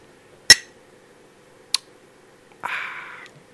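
Glasses clink together in a toast: two sharp, isolated taps, then a brighter clink that rings briefly before fading, over a quiet background with no talking.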